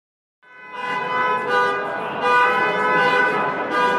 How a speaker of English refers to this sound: So what you're hearing right now in the background is a bunch of car horns going off. And the reason those horns are going off is because I am at Car Hacking Village at DEF CON.